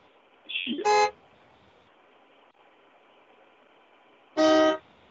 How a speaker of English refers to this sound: I don't know if you caught me this fast, but she was honking her horn. I didn't hear anything. She just did it again.